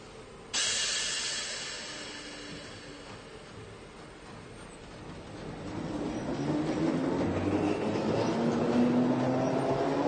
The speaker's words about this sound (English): After spreading out our sleeping mats, we're passably comfortable, falling into a surreal world where dreams hold sway, just as the first of many freight trains roars by.